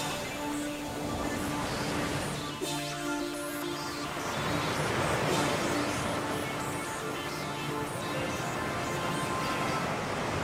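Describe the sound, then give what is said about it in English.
A steady, broad wash of ocean surf fills the whole stretch, swelling slightly midway, with faint tonal sounds like a soft music bed underneath and no talking. “When you hear the sounds of the ocean, it gives the Sports Joc just a minute to vent.”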